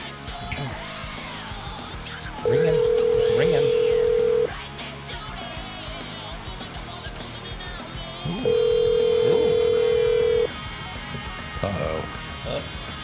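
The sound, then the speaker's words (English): An outgoing phone call ringing on the line: two long, steady two-second tones separated by a pause of about four seconds, heard over a busy background with faint voices. “Ooh, it's ringing.”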